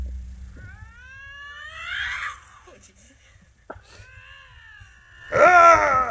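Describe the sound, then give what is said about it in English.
Wild cats yowling in long, rising and falling squeals that sound like a squeezed rubber chicken, with a loud, harsh burst near the end and a low rumble at the start. “Sounds like someone just squeezing a rubber chicken.”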